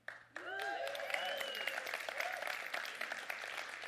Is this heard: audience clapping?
yes